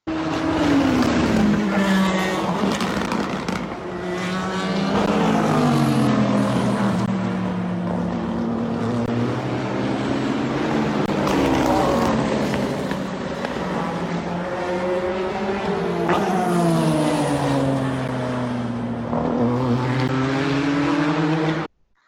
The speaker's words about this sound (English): There was some more car noises. Sorry, I'm being quite cruel and dropping car noises on you. Well, at least you're hearing some sort of racing.